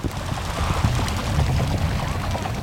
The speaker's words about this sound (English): And then, hundreds of birds lift off the water and take flight. That was sort of impressive.